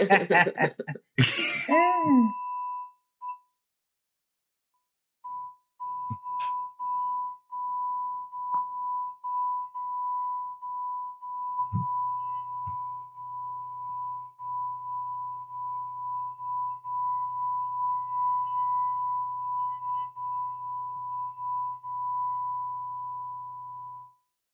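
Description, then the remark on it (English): A gong is struck once by a DJ, leaving a long, steady metallic ring that hangs in the air for over twenty seconds, with a low hum beneath. Brief voices and laughter come just before it. “DJ, gong that shit, baby. Oh, yeah, gong, this with the gong, bang baby.”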